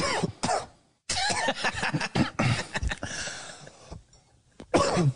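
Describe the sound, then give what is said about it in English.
A series of loud coughs comes in several harsh bursts with short pauses between them, ending on one more hacking cough. “I literally was just coughing.”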